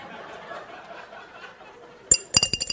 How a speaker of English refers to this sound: And then here, pickle jar with the dice from, do you play Yahtzee? Used to. Smell that. Pickle jar.